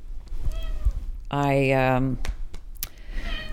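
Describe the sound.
A single loud, drawn-out meow from a cat named Spice, lasting under a second, with faint background noise and brief moments of talk before and after it.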